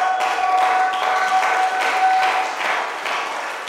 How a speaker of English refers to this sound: You may be seated. You are clapping for Jesus.